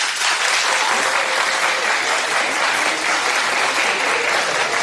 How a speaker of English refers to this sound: And Wendy asks a question of the audience, and we're going to hear it right here. But look, clap if you're participating in Galentine's Day.